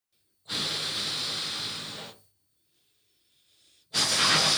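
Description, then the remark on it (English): Two strong bursts of breathy, hissing air are blown into a balloon, the first lasting about a second and a half, followed by a quiet pause with a faint intake before the second blast begins. “Take another breath and blow it again.”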